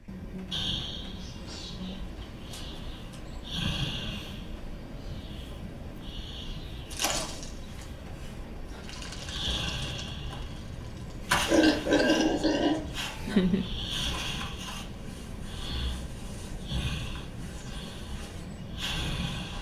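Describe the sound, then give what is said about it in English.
A huge pig in Wada's 2010 animated film In a Pig's Eye breathes heavily and laboriously, with repeated wheezy, raspy breaths and snorts and a louder, rougher burst of snorting partway through. “Here's a remarkable scene from Wada's later work, In a Pig's Eye, from 2010, where the weight and labored breathing of this giant pig contrasts with a pair of boys' short-lived enjoyment of a momentary release from gravity.”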